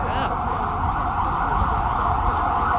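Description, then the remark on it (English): A loud ambulance siren blares on a New York City street, its steady high wail filling the whole moment over a low rumble of traffic. “It's an ambulance.”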